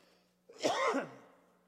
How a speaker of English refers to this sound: I'm going to cough again, sorry.